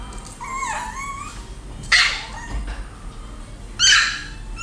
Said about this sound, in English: Okay, so the next one is a small dog. It's, I suppose, what people class as a handbike dog.